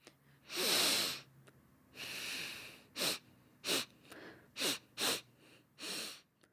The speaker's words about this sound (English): That was the sound of someone sniffing something.